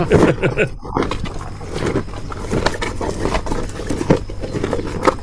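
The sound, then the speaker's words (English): A cow moos loudly and continuously, recorded extremely close so the call sounds huge, rough and breathy, filling the whole clip with barely any break. “The mic is in jeopardy of being eaten. He's inside the cow.”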